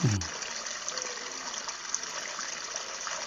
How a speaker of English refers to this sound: We hear the sound of rushing water, and we see a pond with a waterfall flowing into it.